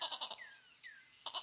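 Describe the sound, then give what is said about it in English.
A goat bleats in two short, quavering bursts, one at the start and one at the end, with a softer, wavering call drifting in between; no voices. “Leah suddenly stood up and dashed off in the vague direction of where the goat's call had come from”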